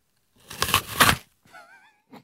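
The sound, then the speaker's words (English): A loud, crisp crunch of someone biting into an apple, the first of several apple varieties being tasted, two crackling bursts in quick succession, followed by a brief wavering vocal hum and a faint final crunch. “Are you ready to just listen closely to this crunch?”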